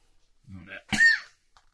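A single sneeze: a short voiced intake builds up, then a sharp, breathy burst with a brief vocal tone at its peak, followed by quiet.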